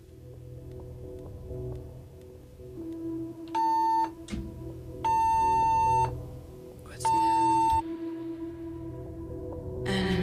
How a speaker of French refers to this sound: Nous avons une alarme de feu en ce moment en studio.